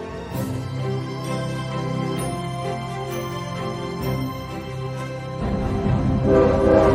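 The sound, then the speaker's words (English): A loud train horn blares in sustained, harmonic tones for several seconds, swelling louder toward the end as the train rumbles past. “You just gotta base it on the train now, I guess.”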